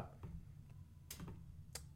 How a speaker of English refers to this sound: Sorry, I'm typing something.